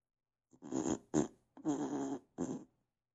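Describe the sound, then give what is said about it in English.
A fart sound effect played back by an Alexa smart speaker on voice request: four raspy, buzzing bursts of varying length in quick succession, clear, with no talking over them. “Alexa, make a fart sound.”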